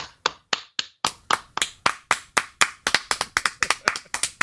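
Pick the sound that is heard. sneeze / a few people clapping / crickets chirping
a few people clapping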